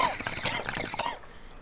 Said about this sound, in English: I'm trying out new coughs. What do you think? That's like a 3 out of 10, maybe. Well, that's got some bass to it there. It's an old man cough. You missed the phlegmy part, though.